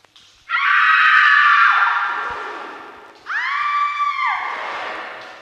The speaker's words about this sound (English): What kind of sick trick is this? Were those screams just recordings? A Halloween favorite, yes.